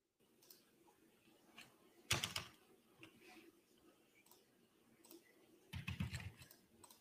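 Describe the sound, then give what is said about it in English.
Scattered, irregular clicks of typing on a computer keyboard while entering a calculation, with two louder bursts of rapid keystrokes, one near the middle and one toward the end. “Something's going on with my fucking keyboard.”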